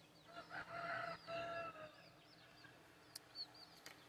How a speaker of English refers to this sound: you've been listening to an ASMR Barnyard Edition. Chickies, mothers and chicks and roosters.